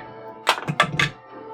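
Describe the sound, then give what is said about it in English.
Dice tumble into a glass of beer, making four or five quick clinks and dull knocks in a rapid cluster, followed by a low, steady background hum with no one speaking. “I just threw my dice into my beer.”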